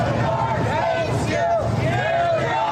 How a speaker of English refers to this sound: Anyway, Trump's motorcade was met by a pretty vocal crowd who welcomed him back to New York City in quintessential New York style.